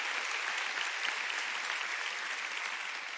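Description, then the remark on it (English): Sustained applause from an audience for author Anthony Horowitz, a dense wash of many hands clapping at a steady, even loudness for the whole stretch, with no voices breaking through. “Ladies and gentlemen, please give a big round of applause for Anthony Horowitz.”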